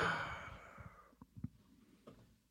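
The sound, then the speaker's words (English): A breathy yawn: a long airy exhale that trails off over about a second, followed by a few soft mouth clicks and small breaths. No one speaks. “Sorry, I yawned a little.”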